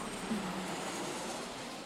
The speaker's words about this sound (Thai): ใส่ซาวใส่เสียงเครื่องบินเดินทางด้วย